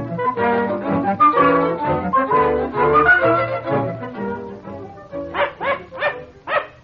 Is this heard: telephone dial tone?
no